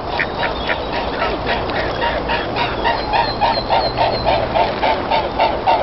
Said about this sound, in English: When mute swans fly, their wings make a distinctive thrumming sound that helps them stay in contact with other mute swans. This is what their wing beats sound like.